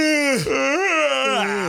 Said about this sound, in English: Did we do it? Did it work? About 900 people. How many people yawned? We just made people yawn.